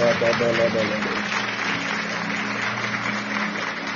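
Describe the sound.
An audience claps together to the Lord as a clap of faith, in a steady, dense wash of applause lasting the whole clip, with a few voices and a sung tone audible near the start.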